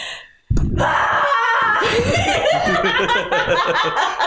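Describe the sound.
After a brief silence, a loud, deep-voiced scream bursts in and holds for several seconds, rough and strained, with a wavering, almost laughing edge near the end.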